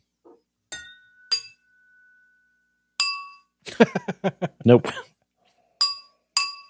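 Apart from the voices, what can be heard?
glasses clinking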